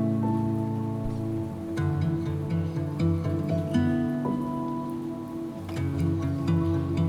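Steady rain falls throughout, with scattered drops pattering on a surface over sustained, droning tones that shift in pitch. No one speaks.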